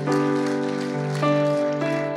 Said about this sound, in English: And God's people say, let's clap hands for Jesus. Amen.